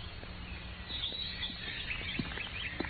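birds singing

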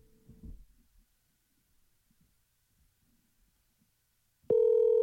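outgoing phone call ringing

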